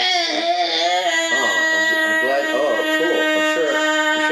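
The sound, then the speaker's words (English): A voice imitates the blaring alarm clock from a movie set in San Francisco, holding a loud, strained, siren-like wail with steady high harmonics for about four seconds, wavering slightly in pitch like a cry. “You liked an alarm clock in a movie and you did an impression of it.”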